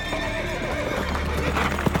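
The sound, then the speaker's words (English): Stagecoach horses going down a hill in a large forest in northern Texas whinny and neigh as they suddenly break into a gallop, over a dense, continuous clatter of hooves, loud and busy throughout, with a sharp thump near the end and no voices. “As it started down a hill, something most likely spooked the animals, and they suddenly broke into a gallop.”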